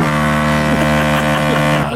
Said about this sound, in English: Oh, good honk. That was a good honk. Where'd you find that honk? Send me that honk. Where are you getting those honks?